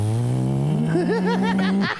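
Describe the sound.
A voice mimics a car engine revving up as the car accelerates from 60 to 95, a steady rising drone with harmonics that gains a wobbling, warbling quality before cutting off, loud, with no other talk.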